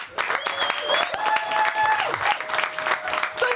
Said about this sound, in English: But thank you. Thanks for coming out. And can I have a round of applause for my wonderful guest, Mr. Nick Helm.